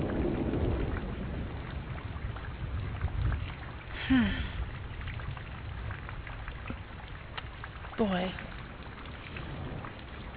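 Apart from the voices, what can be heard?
steady rain falling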